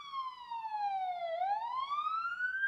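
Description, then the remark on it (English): An emergency siren wails outside, its pitch sliding down then sweeping back up in a steady, continuous tone, fairly loud and clear with no talking over it. “Wow, first siren on the pod.”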